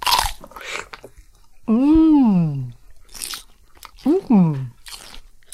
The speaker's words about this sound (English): Tom slowly picked up the apple. It looked fine and juicy, so he began to eat it.